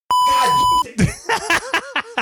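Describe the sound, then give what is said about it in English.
A single loud, steady censor bleep tone lasting under a second, covering a spoken name, followed immediately by a person talking in quick, clipped syllables. “You gotta beep out a name.”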